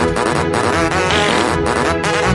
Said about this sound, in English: In medium mode there are 8 numbers to choose from. Each number will play a fart sound, like this.